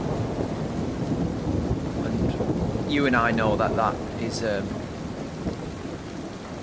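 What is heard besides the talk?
thunder rumbling with rain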